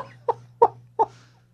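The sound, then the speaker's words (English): A dog gives three short, evenly spaced whining yelps, each a brief mid-pitched burst, over a low steady hum with no talking. “So you guys just don't even talk about when a dog's going ballistic in the background, or...”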